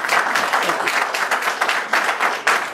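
A crowd applauds steadily, a dense, crackling wash of many hands clapping at once that stays loud and even for the whole stretch, with no pause or tapering.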